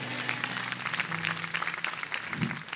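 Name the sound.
audience clapping hands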